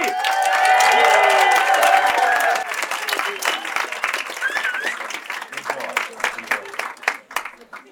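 A crowd at a storytelling event bursts into loud applause for the next performer, with whoops and cheers for the first couple of seconds, then the clapping carries on more softly and thins out toward the end.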